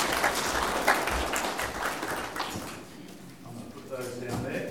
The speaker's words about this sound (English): Guys, thank you very much. You're very good. Let's give him a little round of applause. Thank you very much.